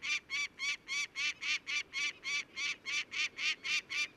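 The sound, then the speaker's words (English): A peregrine falcon gives a rapid, steady series of harsh, agitated cacking alarm calls at a bald eagle drifting by, about fifteen loud, raspy notes in quick succession over a soft background hiss. “This peregrine falcon has taken exception to it being here. Listen to this.”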